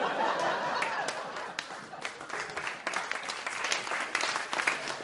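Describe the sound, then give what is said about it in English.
Steady audience applause at a cups-and-balls magic performance, a dense wash of many hands clapping that holds at an even level for about five seconds, with a few sharper claps standing out and no one speaking. “Save your applause for later.”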